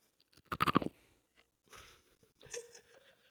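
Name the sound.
crunching potato chips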